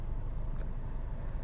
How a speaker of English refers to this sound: I'm sitting in my car, frustrated.